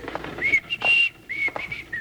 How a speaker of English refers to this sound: I'll just start whistling and pass right on by. Maybe she won't run out to greet us this morning. Here we are. Keep whistling.